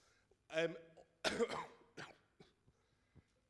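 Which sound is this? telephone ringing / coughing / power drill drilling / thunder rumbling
coughing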